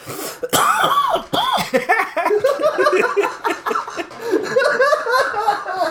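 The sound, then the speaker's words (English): A prolonged, loud coughing fit: harsh, rapid coughs tumble over one another for several seconds with barely a pause, mixed with raspy throat clearing. “Everybody, this is our special coughing / Australian episode of the Mystic Pizza Minute.”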